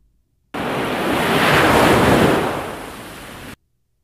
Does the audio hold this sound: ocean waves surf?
yes